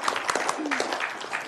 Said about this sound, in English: Thank you so much. Big round of applause, everybody.